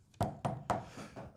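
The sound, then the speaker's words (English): Three sharp knocks made with a vape at an even pace, each a hollow thud with a quick bright attack, followed by a softer fourth tap and a faint decaying rattle. No one speaks. “Here's a vape knock.”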